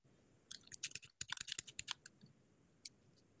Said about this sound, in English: Whoa, who's typing there? Who's typing there?